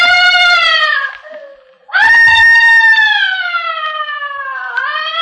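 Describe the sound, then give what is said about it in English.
Loud, shrill screaming in a dark, empty house, in two long drawn-out cries, the first fading and dropping in pitch before a second wail bursts in and slowly slides downward, with no talking. “Where is that screaming coming from?”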